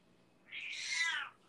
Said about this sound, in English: Remember when my cat made a vocal appearance on your show? Yeah, it was not too long ago. Yeah, it wasn't too long ago. I don't know. He's firing up again, man.